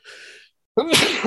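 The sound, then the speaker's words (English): A sharp intake of breath, a brief pause, then one loud sneeze bursting out with a voiced, throaty finish. No talking. “Bless you.”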